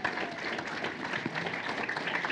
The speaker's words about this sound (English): Give them a hand clap.